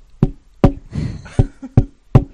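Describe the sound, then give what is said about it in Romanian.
Five sharp, evenly spaced thuds, footsteps simulated by knocking or tapping on a surface in a radio-play-style reenactment of a man stepping out with a hat, with a brief rustling scrape in between. No one speaks. “Nu, eu vreau să simulez acum pașii, știi.”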